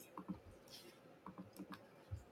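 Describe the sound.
Quiet typing on a computer keyboard, with short irregular bursts of soft key clicks separated by pauses and a faint background murmur of voices.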